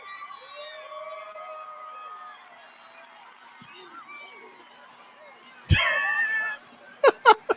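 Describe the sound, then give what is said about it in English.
A football stadium crowd in Missouri murmurs with scattered whistles as Sarah Fuller is about to kick a football, then erupts into a loud, sustained roar of cheering, followed by a few sharp bursts of shouts and claps. “You can hear the crowd.”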